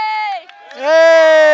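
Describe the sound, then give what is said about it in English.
Several people at a marathon let out loud cheering shouts for a camera in two bursts: a sustained yell that dips briefly, then a stronger, longer whoop that rises and holds to the end. “Oh, there's a camera. Everybody cheer.”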